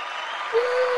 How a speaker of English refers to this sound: But I forgot to hit the applause.